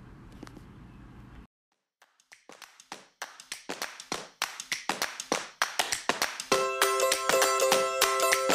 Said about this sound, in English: That wasn't one clap, that was three. That was three. It was three claps because every time I do one, you make fun of me.